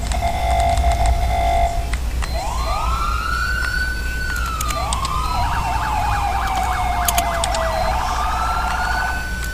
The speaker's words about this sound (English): That's the new siren that I got.